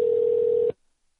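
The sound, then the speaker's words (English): A single steady electronic telephone ringback tone, a flat mid-pitched hum on an outgoing call, sounds clearly for under a second and then cuts off into silence. “You get a ring here? Is it going to ring?”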